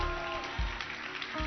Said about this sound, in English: Oh, your hand clap is not encouraging at all.